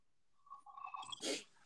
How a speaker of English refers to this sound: And did you just slurp? I did. Wow, you violated a rule, damn it.